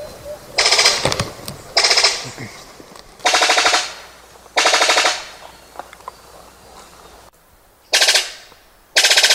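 A bird of paradise call: six loud, harsh, rapid-fire rattling bursts, each under a second, spaced by short pauses, with a buzzy, machine-gun-like texture.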